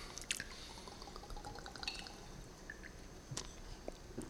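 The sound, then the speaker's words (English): Quiet, wet liquid sounds of someone gulping down a drink, with scattered sloshing clicks and drips and no talking. “Guzzle, guzzle.”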